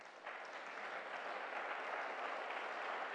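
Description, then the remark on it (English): An audience at a Worship Friday service applauds the sisters, a dense steady wash of many hands clapping at even loudness for about three seconds, with no voices standing out. “Once again, let's clap for them.”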